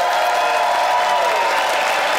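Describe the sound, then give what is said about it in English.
A studio audience votes by applause in a Peanuts versus Pretzels debate, clapping loudly and steadily in a dense wash that holds for the whole stretch, with faint cheering tones mixed in and no one speaking over it. “I know that, but it's Peanuts versus Pretzels, and it's this audience's time to vote by applause.”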